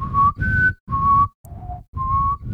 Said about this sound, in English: If I whistle, does that blow out the levels? A little bit.